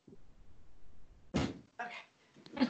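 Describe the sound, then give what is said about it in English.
A door is pushed shut: a soft thud, then a second rattling bump and a final knock of the latch, three short bursts over faint background noise. “Yeah, so I'm actually just going to close it because my family are loud.”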